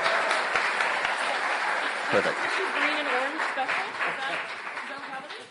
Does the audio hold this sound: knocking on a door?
no